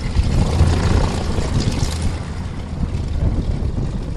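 A Nanchang propeller airplane engine drones loudly and steadily while flying over Victoria, a continuous rumble with a rough throbbing texture and no voices over it.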